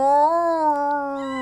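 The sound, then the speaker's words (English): A voice imitates a sad dog with one long, drawn-out whimpering cry, its pitch rising slightly and then sagging as it holds steady and fairly loud, with no other talking. “I remember walking into my backyard one day when I was in school, and I could hear, like, this sad barking going...”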